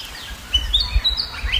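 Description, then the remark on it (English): A willy wagtail, a small black and white bird with a long tail, sings a quick run of bright, sweeping whistled chirps, clear over a low outdoor rumble, on a bush property in Western Victoria, southeastern Australia, at sunrise, with no one talking. “That song is a willy wagtail. They're a small black and white bird, and they have a long tail.”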